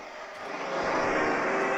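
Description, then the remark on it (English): A steady airplane engine drone on board an airplane in a film scene fills the whole moment, a broad continuous roar with a faint humming tone, swelling slightly louder partway through. No voices are heard. “it's on the airplane at the Jurassic Park”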